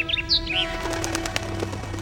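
A small bird flaps its wings in a quick flurry as it takes off from a man's finger, with a few bright chirps at the start and soft rapid fluttering.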